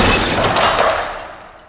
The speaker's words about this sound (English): She gripped the phone tightly and threw it directly at Mr. Screen. The phone hit the screen with a loud bang. Glass shattered everywhere.